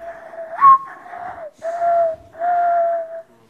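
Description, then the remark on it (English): A singer whistles an imitation of a bird call: a few sustained, warbling tones with a quick upward chirp at the start, each phrase held steady with brief gaps between, clear and fairly loud. “Do you do any bird calls?”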